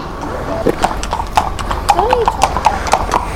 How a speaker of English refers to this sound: Oh my goodness, horses and a tractor. Right, I'm going to wait here for all these guys to pass and cool down a little bit, because this tractor is going to be loud.